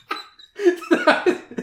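A woman coughs and sputters cola up through her nose, a short burst followed by several harsh, wet, gagging heaves, with no speech.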